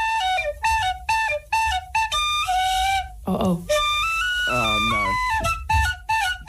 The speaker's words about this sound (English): She's not brought the tin whistle back as well, has she? She has, for one very particular reason.